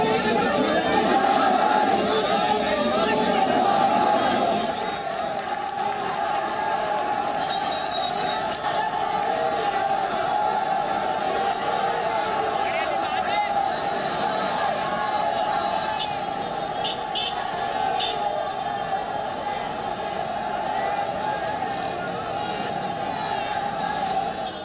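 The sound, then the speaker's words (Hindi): A dense crowd gathered outside gate number one of the Jama Masjid murmurs and chatters continuously as police arrive to clear it. Many overlapping voices form a steady loud wash, with occasional shouts and traffic rumbling underneath throughout. “ये gate number एक है जामा मस्जिद का, उसके ठीक बाहर यहाँ पे इस वक्त भीड़ है, फिलहाल जो पुलिस है वो पहुंच चुकी है और इन्हें यहाँ से हटाया जा रहा है।”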